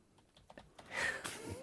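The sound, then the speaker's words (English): Soft, irregular keyboard clicks tap away for under a second, then a louder burst of rustling noise with a faint rising tone takes over. No one speaks. “And you can hear the typing.”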